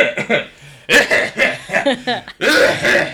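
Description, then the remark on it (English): A voice mimics two women on a bus coughing back and forth, several harsh, throaty bursts in quick alternation, loud, with bits of laughter mixed in. “When I was coming in on the bus today, yeah, it was like two women were having dueling coughs.”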